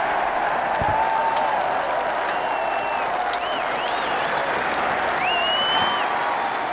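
A large golf crowd at the Open roars and applauds continuously for Jack Nicklaus's putt, the final stroke of his Open career, a dense wash of clapping and cheering with occasional whistles rising above it, loud and sustained throughout.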